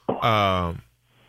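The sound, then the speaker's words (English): A single loud bark from the dog Sparky as someone walks into the house, drawn out into a harsh, tonal yelp that holds for well over half a second, then fades off with no voices around it. “My wife decided to walk into the house, and my dog decided, I don't know.”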